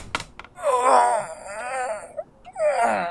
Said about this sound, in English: As the three of them were talking about the current situation and the next steps for them, the father sat up like being shot out of a cannon and began to groan.